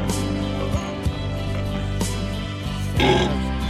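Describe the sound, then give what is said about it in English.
A long, sustained burp rumbles low and steadily for several seconds, with a brief louder gurgling surge near the end and no talking. “Are those his actual burps?”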